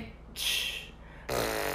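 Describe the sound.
A voice makes breathy, sputtering noises like a fart while attempting to beatbox: a hissy burst, a brief lull, then a longer raspy blast.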